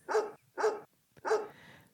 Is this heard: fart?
no